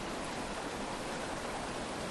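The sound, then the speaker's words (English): A steady, hissing rush of flowing stream water, continuous and even without pauses, fairly soft and heard on its own with no voices. “A movement. Just like this water.”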